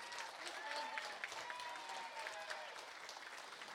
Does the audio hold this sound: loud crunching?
no